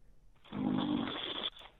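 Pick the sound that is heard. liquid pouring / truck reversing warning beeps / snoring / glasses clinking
snoring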